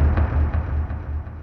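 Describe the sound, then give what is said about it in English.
A deep, booming bass drum hit used as a reality-TV sound effect. Its heavy low rumble is sustained throughout, with a few softer pulses recurring at a steady pace. No one speaks. “I use a lot of bass drums because they give you a bang hit.”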